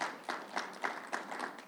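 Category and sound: crowd, audience clapping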